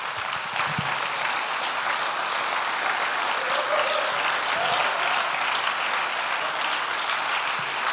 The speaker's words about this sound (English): Can we just give God a huge hand clap?